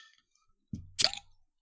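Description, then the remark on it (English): A short, wet glug of Southern Tier Warlock pumpkin stout pouring into a glass: a soft low splash that swells into a brief fizzy, gurgling burst, then fades within a second, with no talking. “And here is our lovely pour.”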